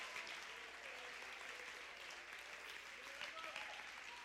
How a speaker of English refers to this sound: Clap your hands. Somebody give the Lord some praise.